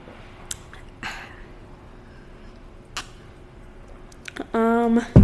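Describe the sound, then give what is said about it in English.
A few short, airy slurping bursts of someone loudly sipping a drink over a quiet background, followed at the end by a brief, louder pitched squeak-like sound. “Sips deep.”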